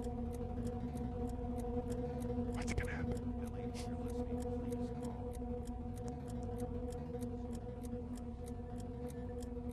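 clock ticking

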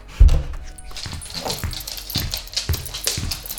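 dog whimpering and yipping

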